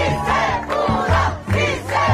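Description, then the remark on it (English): Fast food workers and labor leaders gathered around Governor Gavin Newsom cheer loudly and continuously, a dense roar of many voices with shouts and whoops rising in a few swells, with no individual speech standing out. “Cheering fast food workers and labor leaders gathered around Governor Gavin Newsom.”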